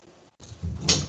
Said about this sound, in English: The dog wants in again. I'm going to leave the door open, but it'll let some smoke in here. You won't see it. Hold on.